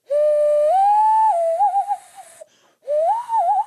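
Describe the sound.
A person imitates a loon call by blowing into cupped hands: a breathy, hollow wail rises, then wavers. After a brief pause a second warbling call follows. It is fairly loud, with no talking.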